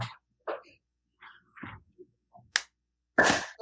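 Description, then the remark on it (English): Scattered, unsynchronized hand claps ring out one after another at uneven moments, some sharp and crisp, ending with a louder, fuller clap burst, with no talking. “Clap for unity measure? Clap. Unity clap.”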